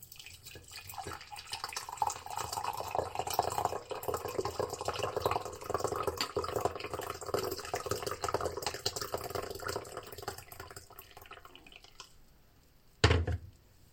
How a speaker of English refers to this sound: I'm actually going to make a normal cup of tea and it's already brewed, so you're going to hear me pour it out